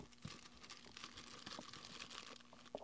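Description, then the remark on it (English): Continuous crinkling of paper and bubble wrap being unwrapped, with dense irregular rustles and small crackling pops throughout, no voices. “Okay, he's got the paper. Oh. Now we got the bubble wrap.”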